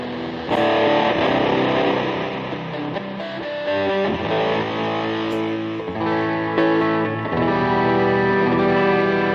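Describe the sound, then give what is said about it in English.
A heavily distorted electric guitar run through a compressor, delay and an Electro-Harmonix micro synthesizer pedal with a filter plays a sustained, buzzy line with shifting tones, loud, with no talking over it. “Has a filter on it.”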